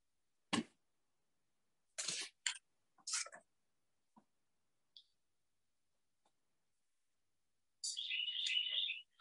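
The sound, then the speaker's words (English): A few sharp clicks and rustles break a quiet outdoor stillness, then a bright, high warbling bird phrase rings out from the trees overhead for about a second, clear. “In the trees above us, the red tanagers, black-crowned warbler.”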